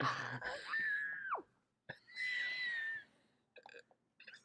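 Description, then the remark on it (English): A person screams into a blanket, letting out two long, strained, muffled cries. The first bends downward in pitch as it ends, and a few short choppy vocal bursts follow. “That was an insane scream into the blanket.”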